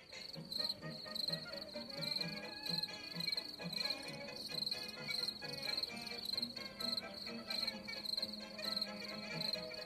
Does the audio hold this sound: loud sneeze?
no